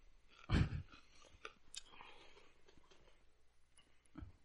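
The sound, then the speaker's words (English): Crunchy chewing of a big bite of food coated with milk: a loud bite at the start, then a run of quieter crackling mouth sounds and a final soft crunch, with no one talking. “Wow, you ate a lot more than you needed to, man.”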